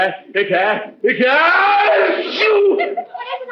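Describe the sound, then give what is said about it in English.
A drawn-out, theatrical sneeze caused by an allergy to a cat: a few voiced, wavering gasps that build into a loud, sustained outburst, then trail off into short breathy sounds. “Say, I didn't sneeze once since I came up here until that cat...”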